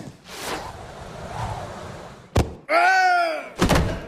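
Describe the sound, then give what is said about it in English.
A cannon shot strikes and kills a man: a rushing whoosh, then a sharp heavy thud, a wavering, descending cry, and another loud thump right after, all fairly loud with no speech. “Well, it is a moot point, as Harry has killed the poor man with his aid cannon.”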